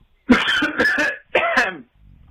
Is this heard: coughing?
yes